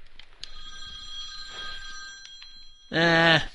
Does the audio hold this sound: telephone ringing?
yes